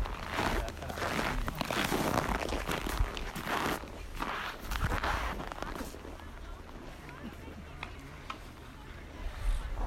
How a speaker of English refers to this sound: You can hardly hear over the crunch of the snow. There was so much snow everywhere.